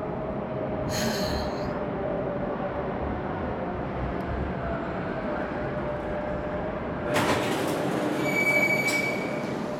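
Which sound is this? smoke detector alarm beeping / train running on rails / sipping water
train running on rails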